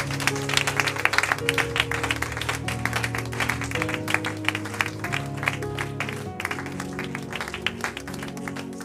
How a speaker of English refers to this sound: How many of you believe God is good? If you are blessed, clap your hands for Jesus.